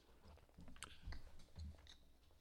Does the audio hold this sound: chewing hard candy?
yes